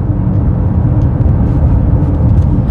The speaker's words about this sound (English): There's one of those people on one of those e-bikes that looks like a motorcycle. God, I hate those things.